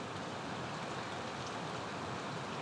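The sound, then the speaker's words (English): Steady rain falling by a lake in a dense, even hiss, continuous, with no voices or other sounds over it. “And that's why I stop and swim in the lake and sit under this boulder and watch this rain.”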